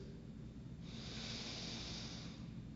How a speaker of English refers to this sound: That's right. Breathe. We've done a little intentional breathing in worship here in prayers of confession. It does calm us down when we inhale, hold, and exhale.